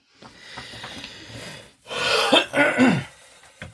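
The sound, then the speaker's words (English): Harsh coughing: a few loud, rough bursts in quick succession with a raspy, throat-clearing edge, preceded by softer breathy rasping. No one speaks. “If I'm coughing, I apologize.”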